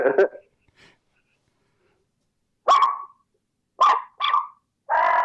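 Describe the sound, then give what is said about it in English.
A reed animal call blown loud, giving about five short, raspy bark-like blasts with uneven gaps of silence between them and no talking. “You hear that little bit of rasp right there? That's where I get my bark.”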